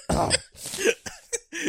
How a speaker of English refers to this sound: Ugh, had a really bad cough.